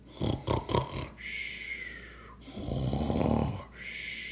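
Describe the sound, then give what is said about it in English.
A voice imitates Santa snoring loudly as he sleeps in his armchair: a few quick snorting bursts, then a long rumbling inhale and a drawn-out rasping snore, clear with no other sounds. “Snored Santa.”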